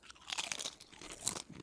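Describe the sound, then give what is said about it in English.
Crisp crunching and chewing of bean chips, a quick series of bright bursts with a sharp crackle near the end, no talking. “It's not like as crunchy as a regular chip. Yeah, bean chips tend to have this kind of texture.”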